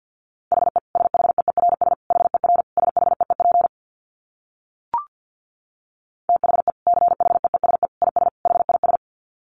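Rapid Morse code at about 50 wpm: a single mid-pitched tone keyed in quick dits and dahs, two bursts of several seconds separated by a pause broken only by one sharp click.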